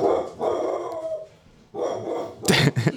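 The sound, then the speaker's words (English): A drug dog barks aggressively as it attacks someone on a street roped off by police, a few loud harsh barks in quick bursts, ending with two sharp snarling barks, with no talking. “That's a drug dog attacking you.”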